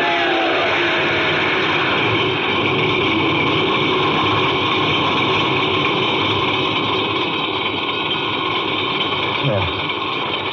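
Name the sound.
car starter cranking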